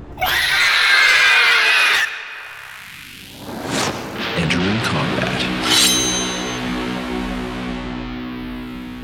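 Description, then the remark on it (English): A wyvern, a dragon-like creature with glowing orange eyes, screeches in challenge: a loud, harsh screech lasting a couple of seconds, followed by wavering, rising shrieks and squeals over a low rumbling tail, menacing. “The wyvern's orange eyes burned, and it screeched in challenge, just as she and Daz loosed their missiles.”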